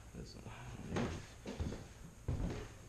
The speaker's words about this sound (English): Except that door shuts.